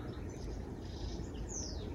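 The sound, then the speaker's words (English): Faint, high bird chirps sound outdoors on a beautiful day over a steady low outdoor rumble, with one clearer descending call near the end and no talking. “See the birds? Beautiful outside, isn't it?”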